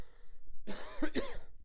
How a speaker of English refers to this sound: Sorry, guys, I'm coughing. I just had some dinner, and I'm choking on, I think, the paprika that I sprinkled in there.